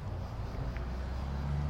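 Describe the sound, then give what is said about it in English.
A True Value Lawn Chief gas lawn mower engine drones steadily as an old man mows his lawn in the small mountain-top town of Mount Storm; a low, rough hum with a constant pitch, fairly quiet and unchanging, with no voices. “In the small town of Mount Storm, at the summit of what seemed like the highest mountain, I stopped to take a break and let a coal truck go by and watched an old man mowing his lawn.”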